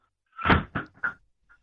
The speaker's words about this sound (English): And he slammed my door with the wind.